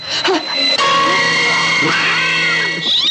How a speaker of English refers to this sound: No, no, no! Cut! I said scream. Do you call that a scream?